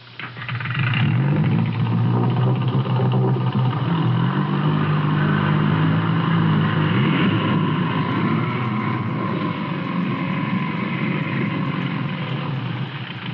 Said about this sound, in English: is a powerful outboard motor that our engineers have especially set up in our studio in order to make possible this live demonstration